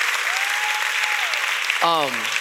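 Steady audience applause fills the space, a dense wash of clapping from a crowd, with a brief high whistle-like tone and a short vocal cheer rising near the end.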